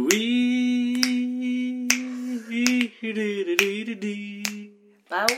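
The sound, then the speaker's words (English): Crisp finger snaps land on a steady beat, roughly seven in all about a second apart, over a sustained low hummed or sung melody that briefly breaks near the end. “We should have just coordinated this awesome new little intro where we're, like, whistling and snapping, and it's just...”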